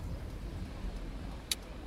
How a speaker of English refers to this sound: Park the car, Arbogast. Right away, sir.